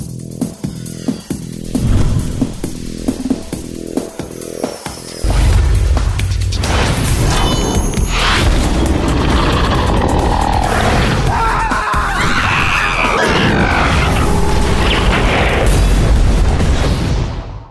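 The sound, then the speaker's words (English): A game animation for Perforos: a quick run of sharp, evenly spaced thuds, then a hammer slams back into a volcano, setting off a deep, loud boom as lava comes out, swelling into a long roaring rumble with crackling bursts before cutting off. “Just slams boom. The hammer back in the volcano and it goes boom and all the lava comes out.”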